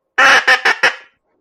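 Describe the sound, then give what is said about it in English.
A goose call made of four quick, nasal honks in a falling pattern, the first strongest and each following note a little softer, tapering away at the end with no talking. “But that soft little decrescendo.”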